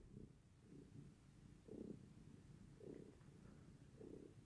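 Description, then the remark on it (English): A person imitates a cat with a series of low, droning meow-like sounds, about five evenly spaced bursts roughly a second apart, fairly quiet, with no other talking. “This is an impression of a cat who is really just sick and tired of singing the theme song”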